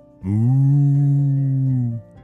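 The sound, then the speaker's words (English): A voice imitates a cow's moo as the story character Olly mooing to impress the cows: one long, steady, low lowing call held for nearly two seconds, fairly loud, with no other talk. “Wow, Olly, you sound like a real cow, said Ellie.”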